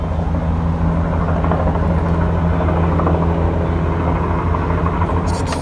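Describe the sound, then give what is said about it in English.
A helicopter flies overhead, its engine and rotor making a heavy, steady low rumble that holds at the same loudness for several seconds with no voices. “Want to see helicopters?”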